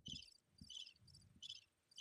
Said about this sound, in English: I think I heard crickets again that time too.